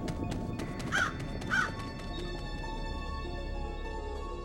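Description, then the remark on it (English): Two short, harsh crow caws ring out about half a second apart, clear, over a steady rustling background with a few faint clicks early on. “A crow leads the way from this cave to where she has to go.”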